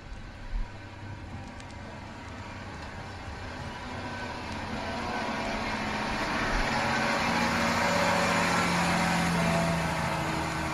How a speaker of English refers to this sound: I forgot the council had cut off the water supply for the next 2 years. Trucks were assigned to deliver our daily ration.